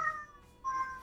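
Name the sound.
cat meowing and caterwauling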